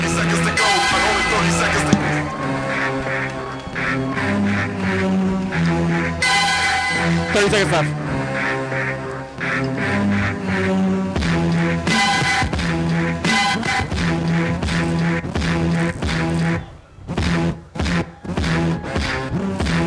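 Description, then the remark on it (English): A DJ battle remix of the Burger King jingle plays loudly and steadily, layered melodic tones over a driving beat, breaking into choppy stop-start cuts near the end. “I'm going to play it real quick in case people haven't heard it.”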